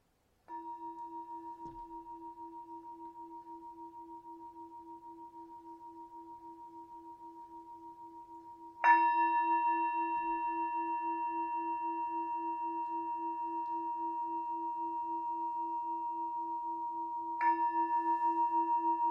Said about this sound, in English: As the bell, the singing bowl, will slowly take you out of meditation.